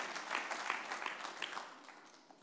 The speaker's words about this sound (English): Why don't we give God a big hand clap this morning? Come on. He's the reason why we're here.